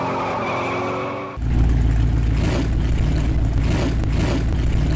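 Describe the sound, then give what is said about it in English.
A car engine roars with heavy low rumble, preceded by a brief high whine that cuts off abruptly; the loud revving continues steadily with tire-squeal-like texture, prominent, no talking. “And do I hear a little rumpity-rump in the background there? Is that the sound effects there?”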